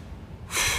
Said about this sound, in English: Pardon my breathing hard here. I'm just straightening up, getting my posture in order here, getting my breath.